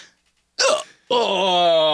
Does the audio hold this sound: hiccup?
yes